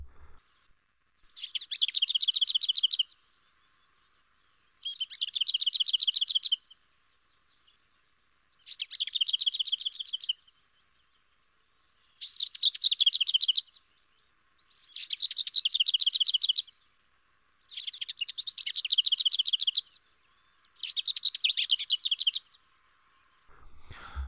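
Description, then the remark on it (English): A lesser whitethroat sings a dry, rattling trill, repeated in about seven short bursts with brief pauses between them, clear with no other sounds. “Lesser whitethroat songs is completely different from that of the common whitethroat, but it's also very difficult to describe.”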